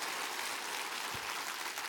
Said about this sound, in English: Miracles still happen. Clap your hands and say, I am one.